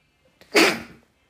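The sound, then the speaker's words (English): A single sudden sneeze: a brief sharp intake followed by an explosive, breathy burst that trails off quickly, heard alone without talking. “I feel like I'm finna sneeze.”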